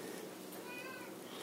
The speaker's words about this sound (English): You probably hear my cat.